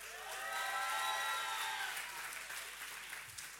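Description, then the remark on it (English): A crowd claps and cheers loudly together for a pastor, steady dense applause with voices whooping over it, swelling early and holding strong before easing slightly toward the end. “Come on, can we make some noise”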